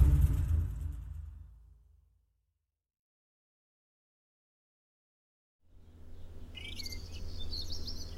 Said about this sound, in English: I wake up in the morning and I begins with the birds. The first bird which starts chirping, you said chirping, and it's a little chirp, like she says, somebody's awake.